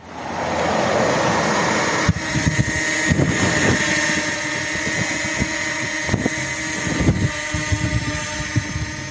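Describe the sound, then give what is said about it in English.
A small grey palm-sized drone called Dory flies on Salford Street, its motors whining and buzzing steadily with a high, tonal hum, broken by occasional soft thumps and clicks; no one speaks. “So I'm going to put the drone up, and the drone, I'm going to run it on the path that Lockie is supposed to have taken from his house all the way down Salford Street”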